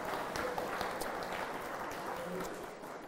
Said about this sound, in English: But as well, the tech this morning is also covered by the Narnian. So I think those guys need a clap as well. Well done for keeping us going.